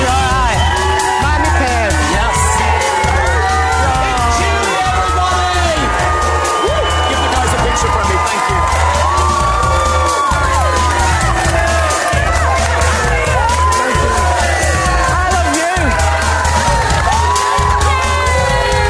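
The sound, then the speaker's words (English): A large studio crowd boos loudly and continuously, mixed with shouts and whoops, at an evicted contestant as she comes out of the Big Brother house, while a steady low thumping beat pulses underneath throughout. “She got booed as well as she came out of the Big Brother house.”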